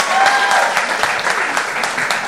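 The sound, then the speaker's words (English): A crowd claps steadily, a dense, even patter of many hands that holds at a fairly loud level for the whole two seconds, with no voices standing out. “Clap if you're not looking for a job at a podcast company.”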